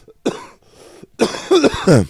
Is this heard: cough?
yes